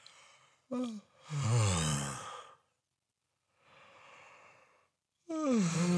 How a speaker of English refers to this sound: So what we're going to do is we're going to start off the exercise with just a yawn. All right. So the mouth open. Yawning.